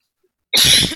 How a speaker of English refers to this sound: Sorry, I keep coughing, guys. Like most of you know, I am out in Pennsylvania. I live right in one of the valleys on the Appalachian Mountains, and I am inside. I haven't even really been outside today, but the air quality is so bad